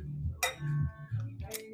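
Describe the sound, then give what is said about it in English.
Glasses clink together in a toast: one bright tap that rings on with a sustained tone, then a second sharper clink a moment later, with low murmuring voices underneath. “Let's first cheers.”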